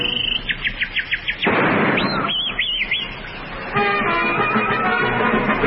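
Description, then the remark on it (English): A man whistles a bright imitation of a birdsong: a quick run of rising chirps, then looping warbled notes over a rushing, noisy background, ending in steadier tonal trills. “He purrs his lips and goes sweet, sweet, and then he whistles like a bird.”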